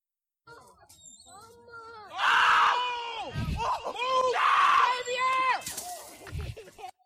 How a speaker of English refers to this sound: I love the screams.